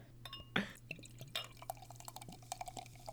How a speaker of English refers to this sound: I'm going to pour this out while you do that.